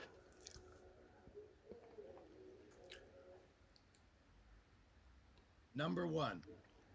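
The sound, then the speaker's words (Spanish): Quiet wet mouth sounds of drinking water: small sips and soft swallowing clicks over a few seconds, then a short, loud throaty burst near the end, with no talking. “De nuevo, tomo agua, tengo la garganta un poco.”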